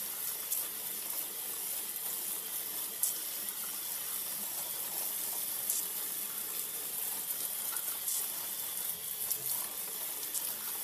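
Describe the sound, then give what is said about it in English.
A steady, continuous hiss of water showering down onto a seed tray of soil with sown seeds, with small fluctuations as the spray moves back and forth in both directions, with no voices. “It's got good weight to it, so I know that it's fairly saturated, but there's no water yet at the bottom.”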